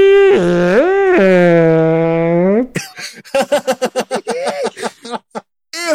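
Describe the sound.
Someone vocally imitates an orgasm: a loud, sustained, warbling moan that swoops up and down in pitch, then breaks into a rapid run of choppy, rhythmic vocal bursts.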